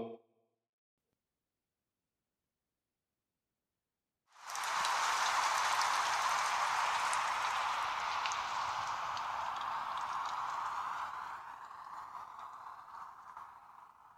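After about four seconds of silence, a steady patter of rain begins, dense and continuous with scattered droplet taps, easing slightly toward the end. No one speaks.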